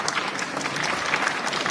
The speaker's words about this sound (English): When attending the afternoon's activities, Chang received enthusiastic applause when he entered the room.